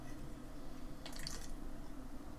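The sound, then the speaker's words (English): A single short, wet slurp of a drink lasting about half a second, hissy and bright, rising briefly over a steady low hum. No one speaks. “Just picture that for a minute while I have another slurp.”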